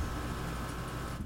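A window air conditioner, set in a window in summer, runs with a steady, low droning hum and a constant airy hiss, unchanging throughout, fairly quiet and with no voices.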